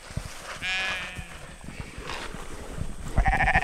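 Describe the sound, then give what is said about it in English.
A small flock of sheep bleat on a pasture in Norwich in short, wavering cries, one around the start and another louder one near the end, with faint outdoor rustling between calls. “brought in a small flock of sheep to start reclaiming the soil.”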